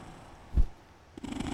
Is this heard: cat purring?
yes